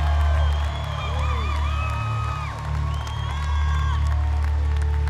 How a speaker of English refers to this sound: Come on, while you're clapping, can you put those hands together for Jesus in this place on tonight?